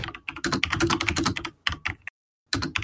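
Rapid keyboard typing, a dense flurry of crisp key clicks that pauses briefly before resuming for a final burst.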